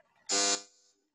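A doorbell gives one short, harsh buzzing ring, loud and rich in overtones, lasting about a third of a second before fading quickly into silence, with no talking.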